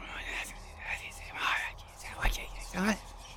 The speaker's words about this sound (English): You hear a collection of screaming. People just wailing, mixed in with people moaning with lethargy and people whispering in hushed tones.